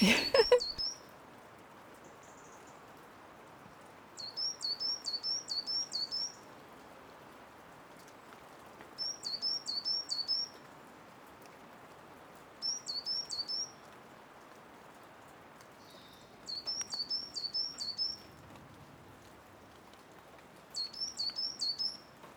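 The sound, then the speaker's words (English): A coal tit sings in the rain in short, high, repeated phrases of quickly alternating two-note calls, going from a lower note to a higher one, about six bursts with pauses between, clear over a steady hiss of falling rain. “And this is song, isn't it? It's singing away.”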